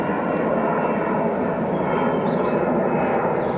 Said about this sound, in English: I just think how ironic that we have a studio and we live under an airport. And here's the plane going by now.